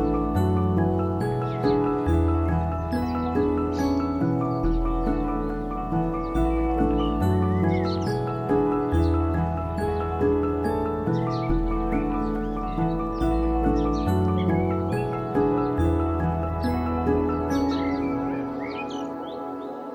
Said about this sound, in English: Come August, the birds will be more or less silent. But at this time of year, each day opens with the dawn chorus.